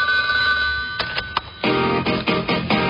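A telephone rings in steady, repeating electronic trills, a bright chirping bell pattern that pulses in quick bursts, loud and with no one speaking.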